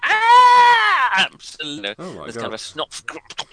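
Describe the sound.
A single loud, sustained wailing scream lasting about a second, its pitch sliding slightly downward, followed by a voice speaking.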